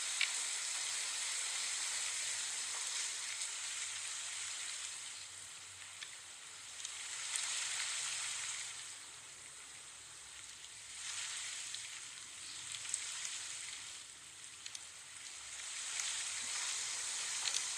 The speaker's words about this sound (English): the rain gets really loud. Okay, so let's talk about the rain.